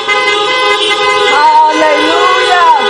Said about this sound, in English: Let the church honk and say amen.